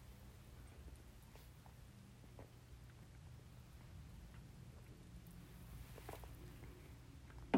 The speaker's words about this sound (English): I'm going to take a quick break to get a sip of my sparkling water.